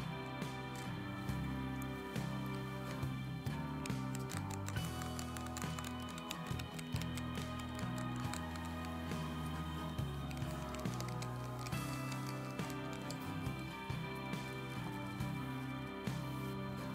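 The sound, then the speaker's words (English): Rapid clicky key presses on an Adafruit macro pad mechanical keypad with Kailh box switches and translucent DSA keycaps, many keys pressed in quick irregular bursts, fairly quiet, layered over steady background music with no one talking. “There's no problem with ghosting and pressing all the keys at once.”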